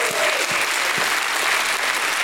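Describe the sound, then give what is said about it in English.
An audience claps steadily as a hand clap and shout of praise to God during worship, many hands blending into a dense, loud wash of applause with no gaps, a few faint cheers rising within it. “One more time, give him a hand clap and a shout of praise.”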